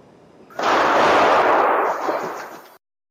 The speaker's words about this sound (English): This morning, two people are in custody after a deadly mass shooting at an El Paso mall. Police are working to learn what led to the shooting. New video shows the moments people ran to escape gunfire.